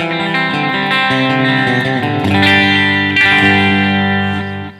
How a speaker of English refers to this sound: Other things we can add, this is called a chorus. Let me make that a little more extreme so you can hear what it sounds like. Chorus is considered to be a modulation effect.